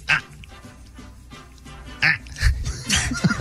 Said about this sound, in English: A lot of grunts. A lot of grunts.